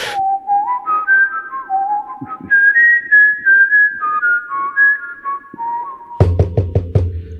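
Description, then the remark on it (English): A person whistles a wandering, melodic tune for about six seconds, fairly loud, to summon someone, followed by a quick series of sharp knocks as that person arrives at the door. “Just let me put my lips together and blow, and we'll see if we can get him here.”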